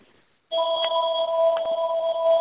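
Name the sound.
telephone ringing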